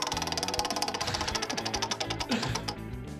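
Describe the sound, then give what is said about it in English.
A prize wheel, the "wheel of moderately interesting things", spins with a rapid stream of sharp clicks that gradually slow and space out before stopping, over a steady low background hum. “You want to spin the wheel of moderately interesting things?”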